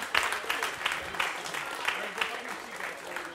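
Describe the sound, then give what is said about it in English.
A crowd applauds people dressed in superhero costumes, steady dense clapping at a moderate level with repeated sharp bursts throughout, lasting a few seconds. “Okay, let's have a round of applause for our superheroes.”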